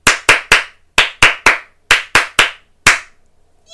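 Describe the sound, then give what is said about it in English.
Hands clap in a rhythmic pattern as part of a clapping game, three groups of three quick, sharp claps followed by a single clap, loud and crisp with no talking over them. “And while you've got your hands clapping, give yourselves a big round of applause for excellent listening and excellent gaming.”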